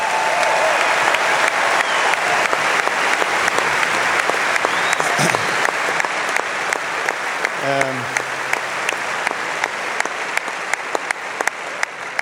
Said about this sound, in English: so you deserve a great respect and great applause for that.